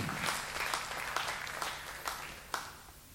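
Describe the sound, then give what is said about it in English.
A crowd applauds steadily, a dense wash of many hands clapping with a few sharper claps standing out, fading slightly toward the end. “That was a good place for you to clap and make me feel better about this whole thing.”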